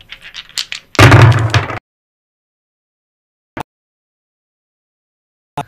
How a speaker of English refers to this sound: So we have the conversation dice with us today. So would you want to go ahead and give them a roll?